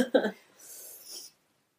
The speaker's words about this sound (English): You got the sniffles? I do.